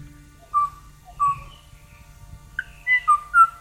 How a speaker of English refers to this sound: Beautiful flute-like call. And it's even sadder when you know that the last recording of it in the 80s was of a lone individual, just a single bird, you know, making a mating call to a mate that was no longer there.